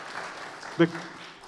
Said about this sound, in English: Let's applaud whoever came up with that one.